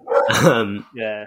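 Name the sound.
dog barking and growling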